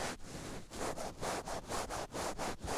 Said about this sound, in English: This is a TriStar picture jacket for you, Pap. Like a weird scratch and sniff of the microphone. Yeah, I'm actually gonna do the back of it where the horse is.